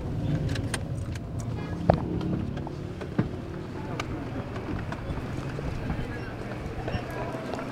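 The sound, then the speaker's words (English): Busy street traffic in South Tehran, Iran, hums steadily while someone gets out of a car and opens the door for a passenger, with two sharp knocks and clunks standing out and voices murmuring faintly in the background. “Watch out for the cars. Let me get off and open the door for you.”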